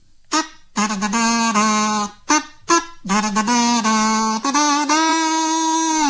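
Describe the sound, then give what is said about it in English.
A buzzy, nasal kazoo plays a short tune in several bursts, its pitch sliding up and down, ending on a long sustained note. No one speaks. “Here comes a kazoo.”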